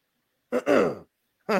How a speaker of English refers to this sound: It's one of them moments. You know what I mean? Where you got to cough because you have no idea what's coming.